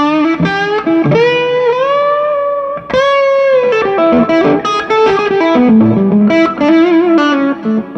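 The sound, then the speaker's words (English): A distorted electric guitar plays loud, sustained melodic phrases through a tube amp, its distortion coming from the amp's red plates themselves, with thick overdriven notes ringing and bending one into the next, played alone with no voices. “My rig that I've been using for the last year, distortion is from the red plates itself.”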